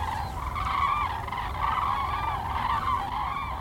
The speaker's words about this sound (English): It's amazing because so there's about 300 birds flying in a V formation right above our heads at this moment. It's geese going south for the winter.